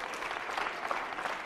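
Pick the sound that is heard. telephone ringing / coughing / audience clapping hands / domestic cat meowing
audience clapping hands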